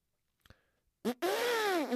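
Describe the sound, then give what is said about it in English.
After a faint click, a voice blurts a short burst, then holds a loud, buzzy, wavering drone, mimicking a rumbling car exhaust for nearly a second. “You're like, dude, that exhaust doesn't sound good. It just fucking sounds like a loud lawnmower.”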